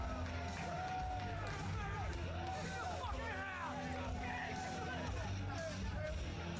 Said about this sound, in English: And this is Nick Gage? Okay. I mean, he has people chanting his name, I guess.